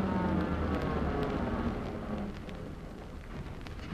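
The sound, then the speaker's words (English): The first of several arriving cars pulls up, its low engine drone gradually easing and quieting as it slows to a stop, with a faint knock or clunk right at the end. “First car pulling up to stop.”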